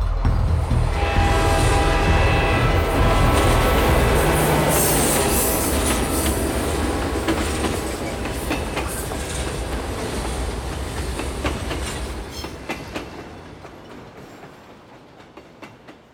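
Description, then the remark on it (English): A train approaches, rumbling loudly with steady clattering and a sustained whistle tone, a bell-like ringing near the end as the noise gradually fades away. No one speaks. “The train was coming closer. I could hear its bell, its cry, its whistle crying.”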